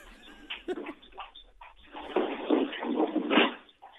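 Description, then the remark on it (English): Wet smacking and slurping from a dog licking something, coming in uneven bursts that grow louder and busier toward the end, with no one talking. “It sounds delectable, whatever's going on. Oh, he's licking something.”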